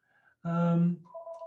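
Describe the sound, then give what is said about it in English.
A telephone rings with a loud, buzzy electronic burst lasting about half a second, followed by a steadier, softer two-tone electronic beep. No one speaks. “Let me turn the phone off.”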